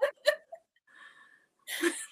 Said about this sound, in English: It says, after your third sneeze, that's between you and God. I did all I could. That's how I feel. I'm just like, listen, you gonna keep sneezing for real? I said, bless you. Like, get it together.